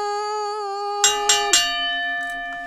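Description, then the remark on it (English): A steady, ringing bell tone hangs in the air, then three quick struck clangs hit in succession and leave a bright, sustained resonance fading slowly. No voices are heard. “And there it is. As the bell sounds, I'm ready to vote for someone today.”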